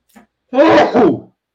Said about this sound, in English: I got to sneeze. Hold on.